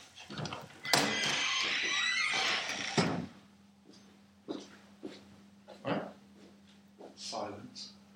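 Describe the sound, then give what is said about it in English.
A door scrapes and bumps loudly as it opens and shuts for about two seconds near the start, followed by a low steady hum with a few soft voice-like sounds. “No, it's just like when the door is open and closing, it messes up the recording.”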